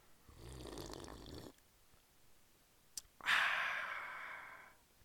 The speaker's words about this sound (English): Lift up your cups and let's have our first slurp as we're getting back to that now.